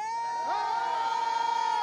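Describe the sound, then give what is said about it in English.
A large audience, asked to scream, screams and shouts together in one loud, sustained roar that holds steady for about two seconds, with a shrill high pitch riding on top of the crowd noise. “We're going to do it one more time because it's God that gives us the ability to scream. To shout.”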